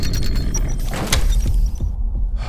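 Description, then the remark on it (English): A heavy sliding wall door, pushed from one side and slid to the right, grinds open with a steady, loud low rumble and scraping hiss, broken by a few dull clunks partway through before the scraping eases off. “I need you to push the wall from your side and slide it to the right.”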